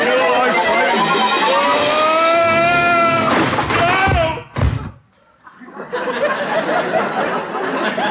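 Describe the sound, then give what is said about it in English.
A chair tips over with a dozing person in it and lands with one loud thud, right after a stretch of strained, wavering vocal sounds. Brief quiet follows, then steady rustling noise. “Oh, I tipped over in my chair.”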